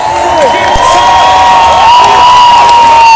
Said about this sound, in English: Everyone's cheering.